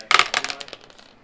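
Dice clatter across a hard tabletop, a quick burst of sharp clicks and rattles that bounce and taper off into a few faint ticks as they settle, with no talking.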